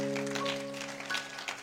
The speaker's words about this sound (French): Alors, nous pouvons nous asseoir en acclamant bien le Seigneur. Applauding the Lord well.